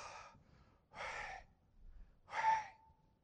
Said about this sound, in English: If you think about those syllables, Yah, you can actually make it sound more like you're breathing in. I know I'm exaggerating breathing in, but just think about a breath in. Sounds almost like, right?